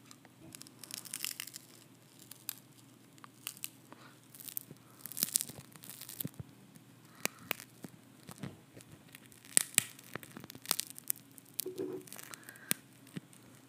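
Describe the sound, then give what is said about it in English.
A thin glass screen cracking and crunching, with irregular sharp snaps and gritty crackles that come in bursts over a low steady hum, and nobody speaking. “It's so easy to crack. This is barely a screen.”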